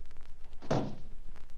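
A single solid door shuts with a dull, heavy thunk, standing alone against a quiet background.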